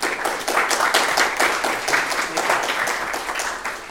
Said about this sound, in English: Please welcome Dr. Faisal Mirza with a round of applause.